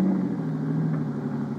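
A low-built car's engine drones steadily at a low pitch as it drives up a rough, curving road on the side of a mountain on a hot night, a continuous rumbling hum with no change in speed or loudness, and no one speaks.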